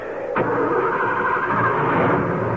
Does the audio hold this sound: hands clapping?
no